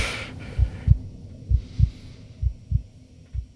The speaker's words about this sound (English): Okay, I'm not the only one that hears the heartbeat noise, right? Okay, I thought I was losing my mind. It's making me nervous.